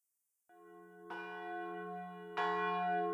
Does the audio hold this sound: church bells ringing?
yes